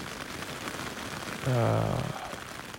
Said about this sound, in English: I kind of have to pee, but it's really rainy outside.